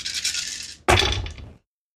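dice rolling and clattering

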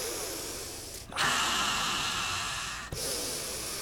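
heavy breathing

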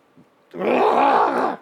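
guttural scream

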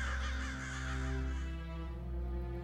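crows cawing

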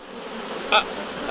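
swarm of bees buzzing

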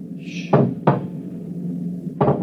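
knocking

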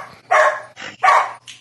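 dog barking

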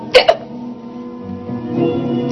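hiccup

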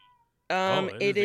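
cat meowing

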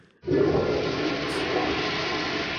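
toilet flushing

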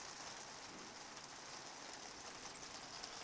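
heavy rain falling

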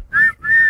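whistle being blown

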